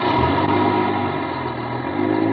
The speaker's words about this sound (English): I ducked behind a post and waited. Waited until the bus pulled out.